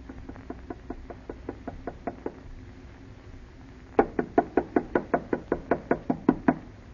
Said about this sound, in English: Harder, Alice. Knock harder. I can't. It hurts my knuckle.